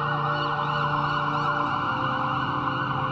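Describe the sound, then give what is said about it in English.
An ambulance siren wails steadily and loudly throughout during an ambulance ride, its rising and falling tone layered over a dense, constant hum of traffic, with no voices. “The ambulance ride seemed buoyant to the point of pleasant before I passed out from losing too much blood.”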